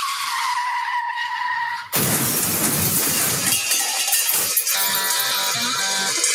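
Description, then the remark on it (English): A car crash scene from Brett Ratner's film Tower Heist: a car skids with a loud, high tire squeal, then slams into something with a sudden crunching crash, followed by a rattling spill of debris and clinking fragments. “That was a cool guy car crash.”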